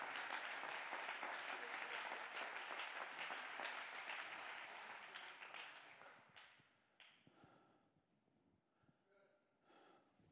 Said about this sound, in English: Come on, let's clap our hands and give him praise.